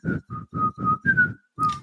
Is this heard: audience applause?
no